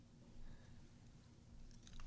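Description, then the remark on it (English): Crunchy chewing of Cheetos into a microphone, a steady stream of munching and crackling bites, fairly quiet overall with a low hum underneath and no talking. “Quit chewing into the microphone.”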